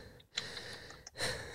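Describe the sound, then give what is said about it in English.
Breathing right into a microphone, two soft airy breaths with small wet mouth clicks between them, quiet and intimate, no talking. “a couple of mouth noises, a little bit of breath.”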